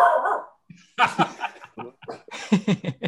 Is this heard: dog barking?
yes